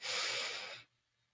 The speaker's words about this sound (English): Let's take a couple deep breaths. Breathing in. Breathing out. Let's imagine we're breathing in peace.